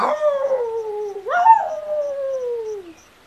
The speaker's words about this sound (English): The jackal howled at the farmer.